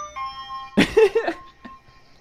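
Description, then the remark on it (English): An ice cream truck moving down a block at about two miles an hour plays its jingle loudly as thin, steady electronic tones held beneath a brief, louder burst of voice-like noise partway through, then carries on faintly. “He's going two miles an hour, and the song is blaring, and you know that song's not going to change.”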